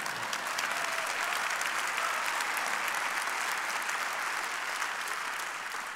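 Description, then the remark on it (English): An audience applauding in church, a steady wash of many hands clapping at once, sustained and fairly loud throughout with no voices standing out. “Yeah, you can clap in church.”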